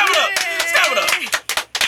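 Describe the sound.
A handful of people clap in a quick, uneven burst, loud, mixed with voices and cheering at first, then thinning to a few sharp final claps, welcoming a guest from the designer world.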